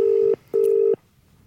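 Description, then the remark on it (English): An outgoing phone call to the O2 information line rings through: two steady, even electronic tone bursts in a quick double-ring pattern, clear, followed by quiet. “Hello, I was just cut off in a previous phone call.”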